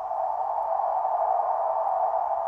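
A white noise machine hisses steadily, a smooth, unbroken wash of mid-pitched noise at a constant moderate level, with no voices or other sounds over it.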